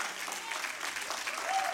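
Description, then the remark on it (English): A crowd applauds steadily for a couple of seconds, a dense patter of many hands clapping at moderate volume with no break. “I'll take an applause out of there.”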